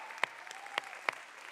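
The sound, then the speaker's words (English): Faint audience applause in a church for the children's ministers forms a steady wash, with a few sharper individual claps standing out. No one speaks. “Come on, give them a great round of applause.”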